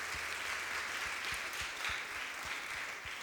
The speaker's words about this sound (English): Let's give these guys a big cheer. Woo.